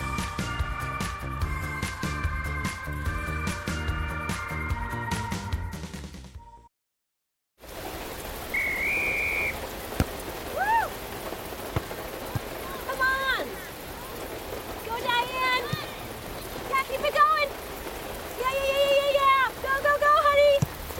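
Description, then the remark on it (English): Music plays briefly, then cuts out. Steady rain follows, a dense, even hiss with scattered higher chirps and whistle-like tones over it. “drive an hour to cheer them on as they get beat 11 to nothing in the rain”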